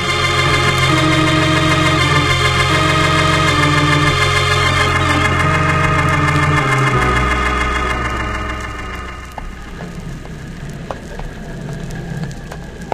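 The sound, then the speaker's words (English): A boat's steady, loud engine drones with dense harmonic hum for several seconds, then its pitch drops and it fades into a softer rumble mixed with patter like rain or splashing water. “How's that engine doing, …? Yeah, going slick as a whistle.”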